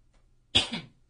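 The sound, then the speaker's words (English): A single short, harsh cough from a person with allergies, a sharp burst trailing into a rough throaty rasp, with near silence before and after. “Still coughing.”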